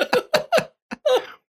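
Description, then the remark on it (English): A voice imitates a whooping cough: a rapid series of four harsh coughs followed by a short gasp and a drawn-out, wheezy whoop, loud and alone without speech. “Whooping cough. Wow, that was a good one.”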